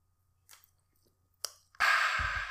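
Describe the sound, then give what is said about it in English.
A couple of quick, soft slurping sips from an ice-cold red soda can, followed by a loud, breathy, refreshed exhale that runs to the end. “Let me get a sip of this ice cold cock real quick.”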